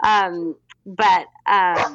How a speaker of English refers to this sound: sorry, my dog just got very excited about something